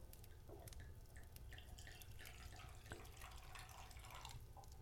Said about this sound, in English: Okay, so I'm going to pour Carrie's first. I'm just going to pour you a little bit